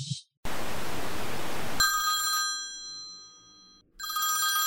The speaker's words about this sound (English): Oh, the phone's ringing.